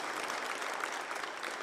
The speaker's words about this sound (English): by letting it be known by saying amen, amen, and applause. We welcome you guys.